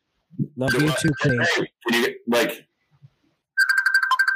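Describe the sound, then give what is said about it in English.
A person talks briefly, then after a short pause a mobile phone ringtone for an incoming call starts up, a bright, pulsing electronic melody playing clearly and fairly loud. “It's Paul Grant calling me right now.”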